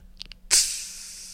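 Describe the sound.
A voice imitates the steam release of a rice cooker: a couple of soft mouth clicks, then a sudden loud, breathy hiss that holds steady and fades slightly.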